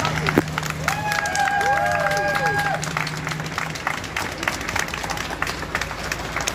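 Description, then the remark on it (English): A crowd cheers and claps outdoors as two coachloads of 91 Ukrainian refugees arrive at Hartley Country Club near Dartford, Kent. It is a steady wash of applause with scattered shouts, while a few whistles and a low hum ring out near the start. “91 people who fled the war-torn country were greeted by cheers and applause at Hartley Country Club near Dartford.”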